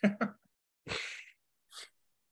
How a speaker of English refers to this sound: Excuse you? You good? No. Sneezing again? Yes.